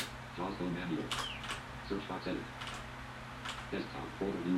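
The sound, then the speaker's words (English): A few scattered keyboard clicks, sharp, tapped at an uneven pace on a Windows computer while a man talks over them against a steady low hum; he is hitting the wrong keys. “I kept hitting the wrong keys.”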